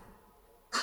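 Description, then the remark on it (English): After a near-silent stretch, a single sudden sneeze bursts out, loud, sharp and airy, cutting in abruptly at the very end with no talking around it. “Bless you.”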